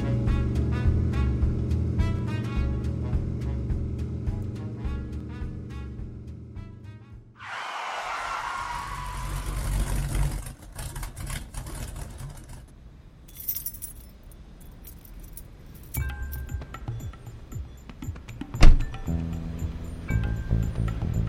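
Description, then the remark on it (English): A big Mopar car being driven toward a library: a steady low engine rumble drones for several seconds, then a rushing whoosh cuts in and gives way to jangling, clinking metallic rattles and scattered clanks. No one speaks. “So I pointed my big Bach Mopar towards the library and did my best to obey all the traffic laws.”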